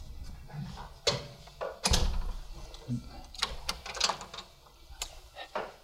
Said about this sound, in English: I'm going to close the door just a little bit so we're not air conditioning outside.